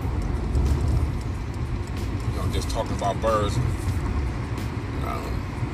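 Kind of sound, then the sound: vehicle, car driving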